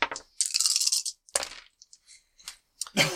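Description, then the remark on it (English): Dice rolled for a leadership check clatter and rattle across a hard tabletop in several quick bursts, sharp clicking tumbles followed by a few lighter taps as they settle, fairly loud with no voices. “Roll your leadership.”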